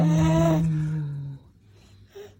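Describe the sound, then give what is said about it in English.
A person moos at a baby, giving one long, low, drawn-out moo in imitation of a cow. The moo is loud and fades after a little over a second into quiet background noise, with a brief faint sound near the end. “Apparently, if you moo at a baby, it'll make them cry.”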